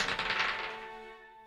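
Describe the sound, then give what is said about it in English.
A handful of Murph's many dice clatter and rattle in a quick, dense burst of clicks lasting under a second, followed by a fading ringing tone as they settle. No voices. “Murph has so much dice back there.”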